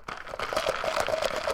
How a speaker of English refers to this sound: Hold on. I need a sip. Ooh, spicy.